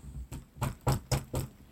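Five firm knocks on a door in a steady, slightly uneven rhythm, each a short, solid thud with a hollow edge, heard alone without any talking.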